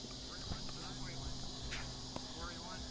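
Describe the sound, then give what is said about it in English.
A steady, shrill buzzing of annual cicadas fills the whole stretch without pause, loud and constant, with faint voices and a few soft knocks underneath. “So I think these annual cicadas are louder than Brood X.”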